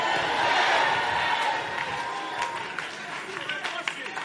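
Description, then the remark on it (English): A large crowd at a service shouts and cheers together, loud, with scattered hand claps breaking through in sharp bursts as the roar slowly settles, answering a call to clap and say "I receive it." “Clap your hands and say, "I receive it."”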